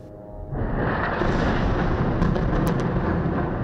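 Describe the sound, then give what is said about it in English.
A loud, sustained roar of Israeli airstrike explosions pummeling the Gaza Strip at night, with flares dropped to mark targets, swells in after a quieter start and rumbles on steadily, with a few brief sharp crackles cutting through partway. No voices. “Shrouded in darkness, the Gaza Strip is pummeled from the air by Israeli airstrikes, with flares raining down to mark targets.”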